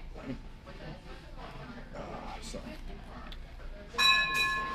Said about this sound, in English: They have a bell at Arby's? Oh yeah. You didn't know that? No. Oh yeah. I thought that was just an LJS thing. No, it's Arby's too.